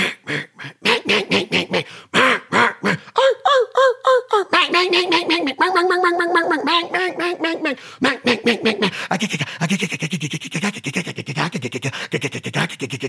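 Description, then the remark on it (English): A person's voice closely imitates mallard duck quacks: a loud, rapid run of nasal, raspy calls, some stretched into longer warbling quacks, then quick choppy bursts, with no ordinary talking. “I'm trying to have a conversation. Emulate a mallard duck.”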